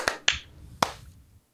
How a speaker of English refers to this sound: I think that was the most synchronized clap sync we've ever had. Yeah, I think that's bad, actually. I'm not sure, but I think that's bad. Too good to be true.